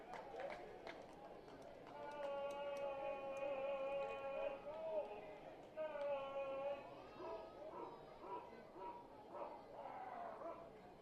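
A dog-like barking and long, wavering howling calls, either a sound effect or a fan barking, ring out over the steady murmur of a large ballpark crowd at a BYU baseball game, fairly loud and drawn out in two stretches.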